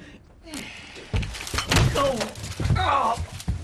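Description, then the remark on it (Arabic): A kitchen door swings open, opened by a wife returning with shopping bags, and strikes a man hard on the head with a heavy thunk, followed by a couple of dull knocks, with voices reacting and talking over the clatter. “فجأة تبطل باب المطبخ ويكفخه على راسه بكل قوة.”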